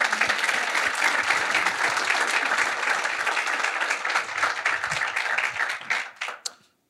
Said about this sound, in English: Let's give our guest of honor a round of applause.